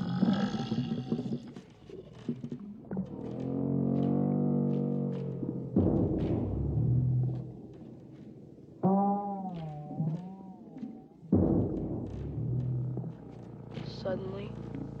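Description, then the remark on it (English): A voice imitates Lard-ass' stomach rumbling during a pie-eating contest: a long run of low, growling, gurgling groans that swell and waver in pitch, broken by short pauses, with no words spoken. “Slowly, a sound started to build in Lard-ass' stomach. A strange and scary sound, like a log truck coming at you at 100 miles an hour.”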